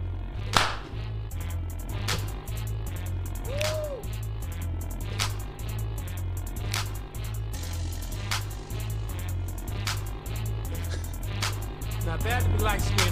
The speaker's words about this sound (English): There you go. I like that clap.